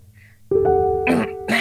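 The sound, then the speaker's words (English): A voice acts out a woman's strained cough as she coughs up blood, a drawn-out pained groan breaking into two short, harsh bursts, loud with no words spoken. “She coughs up some blood.”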